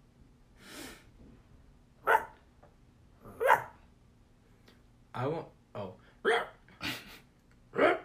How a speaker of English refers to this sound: So. I don't think that's a bird. It's not a bird. I think that's a chihuahua. Uh-huh. But it's a short hair chihuahua. Short hair. Yeah.